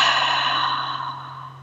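A single deep breath in and out, a steady, airy rush of air that slowly fades, with a low electrical hum underneath and no talking.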